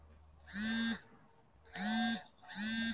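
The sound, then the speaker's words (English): A Pokemon Go game notification on a phone sounds three times in a repeating pattern, each a bright, buzzy, honk-like tone lasting about half a second, fairly loud with no talking. “Is that the beeping I hear then? Yes.”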